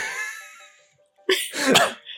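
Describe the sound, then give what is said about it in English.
A fading ringing tone dies away into silence, then several people give a quick cluster of small, overlapping coughs, moderately loud, with no talking. “If everybody would cough, please.”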